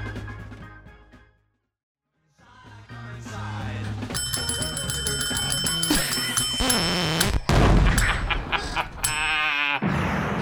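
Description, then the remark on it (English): A bell is struck over and over in quick, energetic succession, its bright metallic rings piling up loudly, after a brief silence near the start. “I mean, nothing made you hit the bell, and you hit it with so much exuberance.”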